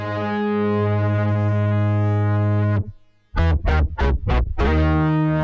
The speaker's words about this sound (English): heavy moog that's bouncing. Like, can you play that? Yeah, just solo like that moog. I love that. Blah, blah, blah, blah. Actually, that was the Voyager next door.